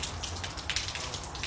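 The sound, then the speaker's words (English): A can of Bang energy drink being poured out: a steady, hissing splash of liquid with a slightly uneven, bubbling texture, lasting under two seconds with no voices. “I'm going to pour it out and drink some Rep Sports.”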